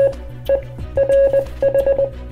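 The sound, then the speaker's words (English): Morse code beeps in a single steady mid-high tone, mixing short and longer pulses in clustered bursts, over a low, pulsing electronic hum. “Oh gosh, okay, here's the Morse code, jeez.”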